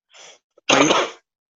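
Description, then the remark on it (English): A person coughs once: a soft breathy intake, a brief pause, then a single loud, harsh, explosive burst lasting about half a second, with no talking around it. “Oh, sorry, I didn't hear you over the one coughing.”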